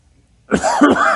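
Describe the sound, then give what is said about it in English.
After a brief pause, a loud cough bursts out and carries on roughly for the rest of the moment, raspy and harsh, with no talking around it. “Excuse me. I get this cough here.”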